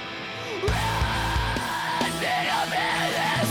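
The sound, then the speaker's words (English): A loud, dense rock song plays, with a strained, yelled vocal line gliding over driving drums and a snare that rings out after each hit. “Quite ringy snare when you really listen, huh?”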